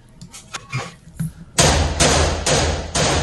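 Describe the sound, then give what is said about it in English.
After a second of quiet clicks and taps, four loud, sharp rifle shots ring out in quick succession, each one booming with a harsh, ringing decay that fills the gaps. The rifle is fired with its muzzle booster removed, throwing a fireball of about 3 feet. “So I took the muzzle brake off, well, the booster off, so that we could see the fire.”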